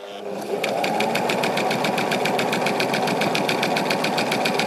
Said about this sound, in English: All right, got the sewing machine out, so let's get working on this coat.